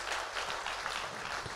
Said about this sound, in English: Clap your hands like you have eternal life.